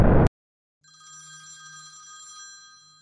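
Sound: telephone ringing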